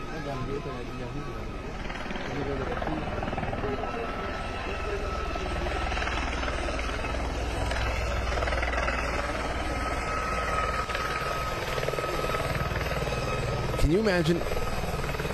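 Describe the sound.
A helicopter flies in to land at a funeral, droning steadily and loudly throughout, its rotor and engine roar filling the whole stretch, with indistinct voices murmuring faintly underneath.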